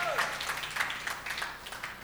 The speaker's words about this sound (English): And all those who are clapping, may heaven remember you.